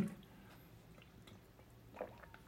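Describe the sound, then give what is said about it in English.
Quiet sipping and swallowing from a glass of water, with a soft wet gulp near the start and another toward the end, set against faint background noise with no talking. “Let me just have a glass of water.”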